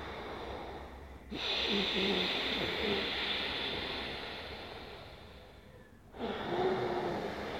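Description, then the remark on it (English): Slow, constricted breathing through the nose, made at the back of the throat during a breathing exercise, a long hissing ocean-like exhale followed by another drawn breath, steady with no talking. “Make that same sound, but through your nose. Same sound on the inhale.”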